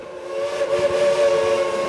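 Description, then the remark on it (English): A steam locomotive whistle at Cass, West Virginia sounds one long, steady, harmonically rich blast that holds its pitch for the whole two seconds, loud and sustained over a faint rumble, with no voices. “So when you hear a steam whistle a mile away, there's no one wouldn't say that's one of the coolest things I've ever heard.”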